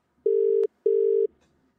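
The ringing tone of an outgoing phone call to Canada: two steady electronic buzzing bursts in quick succession, clear and moderately loud, followed by a brief pause with faint line noise and no voices.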